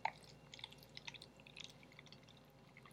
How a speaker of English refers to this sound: All right, let's pour it. Can we get a pour? Let's pour it.